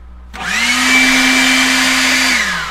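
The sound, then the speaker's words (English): A leaf blower starts up and runs with a loud, steady roar and a high motor whine, holding at full power for a couple of seconds before beginning to wind down. “This is a leaf blower.”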